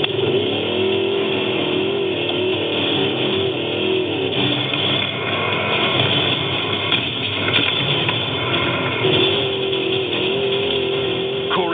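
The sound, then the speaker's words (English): A powerful trophy truck engine roars steadily at full throttle, loud, with a sustained droning pitch that wavers slightly as it strains over rough San Felipe terrain, DJ Baldwin holding the throttle down while keeping the lead of the trophy trucks. “DJ Baldwin still holding the throttle down, determined to finish on top.”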